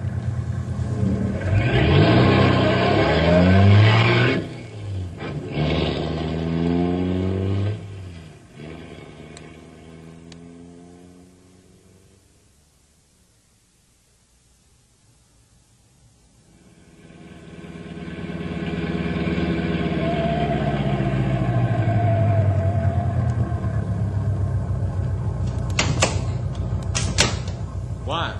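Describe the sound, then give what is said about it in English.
A car engine roars and revs loudly with shifting pitch during a chase down a bad road, fades away almost to silence, then swells back into a steady drone, with a few sharp clattering knocks near the end. “We black and blue from chase down this bad road.”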